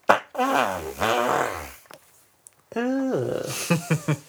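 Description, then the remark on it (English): A voice blows a series of wet, buzzing mouth fart noises with wobbling pitch, pausing briefly midway before a few more sputtering bursts and short pops. “Come on, let's make some fart noises.”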